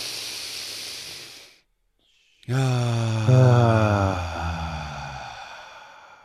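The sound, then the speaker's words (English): A slow, deliberate deep breath: a long hissing inhale, a brief pause, then an extended exhale that turns into a low, voiced sigh fading out gradually. “We can't do anything in this world faster as far as an automatic or autonomic process besides breathing.”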